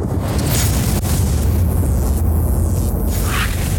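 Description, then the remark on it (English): A thunder sound effect: a loud, deep rumble of thunder rolls on steadily for about four seconds, heavy in the low end with a faint crackle on top. No one speaks. “bring the lightning.”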